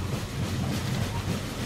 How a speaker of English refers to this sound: Ah, the sound of trains. I just love trains.